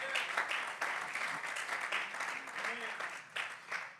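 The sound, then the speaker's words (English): A church audience claps in praise steadily for the full four seconds, a dense, crackling wash of many hands, with faint voices calling out beneath the applause. “Somebody clap your hands and praise Him tonight.”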